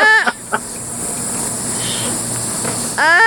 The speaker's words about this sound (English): It was a baby sloth looking for attention. That is the most hilarious sound ever.